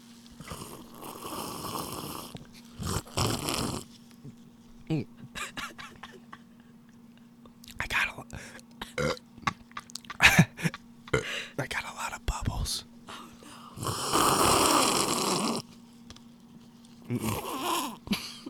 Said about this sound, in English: You gotta slurp it into the microphone.